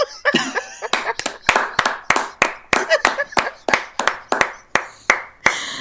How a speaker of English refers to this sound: I love that clap. I'm at the clap, so I know to edit my part out. But I love the applause. I loved that. Yes. Oh yeah, I thought you meant if you could get an applause break, not the edit clap.